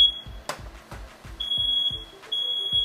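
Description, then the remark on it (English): A house smoke alarm shrieks in a loud, sustained high-pitched tone, cutting out briefly and resuming, while thumping low knocks and clatter sound in the background. “At least the fire alarm went off, right?”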